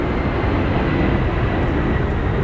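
vehicle, airplane flying overhead

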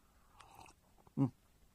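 food or drink, slurping a drink

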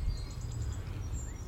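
bird, birds singing

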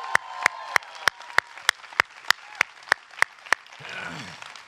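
crowd, audience clapping and cheering

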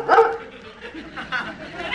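animal, dog barking

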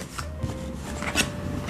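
household object, shuffling tarot cards

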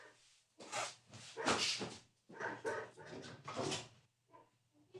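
animal, neighbor's dog barking

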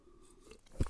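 food or drink, sipping water

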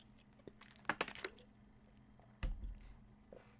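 human body sound, drinking water

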